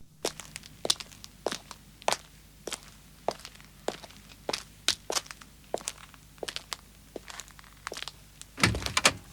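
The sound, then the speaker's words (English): A sound effect that opens an album: a steady series of crisp footsteps, about two per second, sharp clicking heel strikes over a low hum, as a person walks and gets into a car, ending with a heavier thud of the car door closing. “It's the sound of somebody walking.”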